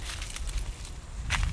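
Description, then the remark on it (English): Dry autumn cottonwood leaves crunch underfoot in a steady run of crackly, rustling steps, bright and papery, with a brief louder crunch near the end and no voices. “The cottonwood is dropping its leaves and they're in full-blown crunchy mode.”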